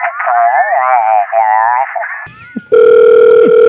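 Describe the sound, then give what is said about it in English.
A wavering, voice-like tone gives way to a brief click, then a loud, steady telephone dial tone hums continuously for the final second. “Do we have a phone one? A telephone?”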